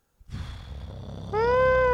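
A cat gives one long, loud meow that begins as a rough, breathy sound and then opens into a clear, sustained, high-pitched cry. No one speaks.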